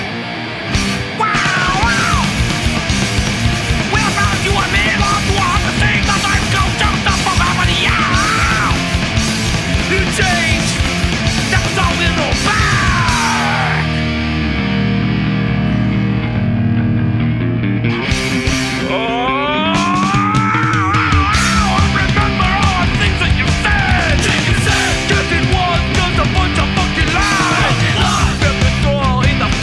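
A loud, dense hardcore punk song from a 1986 album, with distorted guitars, driving drums and shouted vocals, easing into a sparser heavy breakdown midway before the full band crashes back in.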